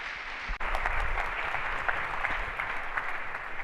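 A crowd applauds steadily to welcome a visiting pastor, a dense wash of many hands clapping at an even, sustained loudness with no voices over it.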